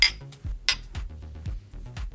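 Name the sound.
glasses clinking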